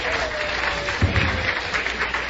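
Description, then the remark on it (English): A crowd from the Red Garter down the street claps and cheers steadily, the applause dense and fairly loud with a brief surge of low rumbling voices partway through, like a group arriving. “This is the crowd from the Red Garter down the street.”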